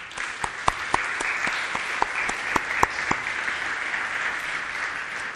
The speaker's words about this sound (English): So can we clap for them? Let's clap for them.